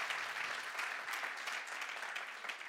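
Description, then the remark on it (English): A crowd applauds steadily, a dense, even wash of many hands clapping at once with no gaps, holding a consistent loudness from start to finish and no voices standing out. “And yeah, go on, we'll clap. I need to clap.”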